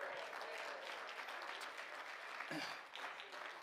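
audience clapping hands

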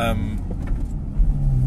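car driving

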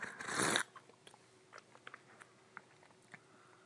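sipping a drink

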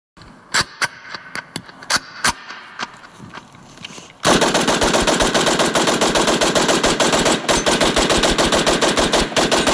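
gunfire

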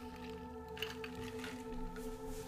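sipping water

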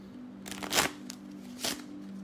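tarot cards being shuffled

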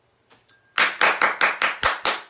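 hand clapping

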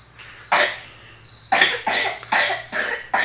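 cough

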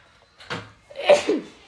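sneeze

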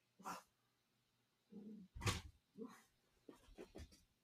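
dogs barking

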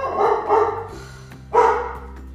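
dog barking

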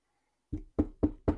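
knocking on a door

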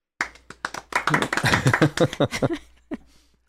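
small group clapping

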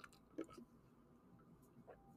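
drinking water

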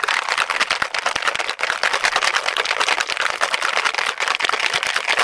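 cocktail shaker being shaken

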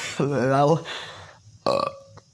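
burping

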